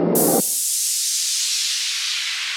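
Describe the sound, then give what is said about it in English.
A rocket engine ignites with a brief low, rumbling burst that quickly gives way to a loud, steady roaring hiss, sustained without a break and with no voices. “5, 4, 3, 2, 1, 0. All engine running.”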